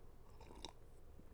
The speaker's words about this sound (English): Maybe another sip of coffee.